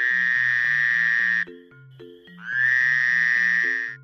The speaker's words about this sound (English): Frogs, they croak.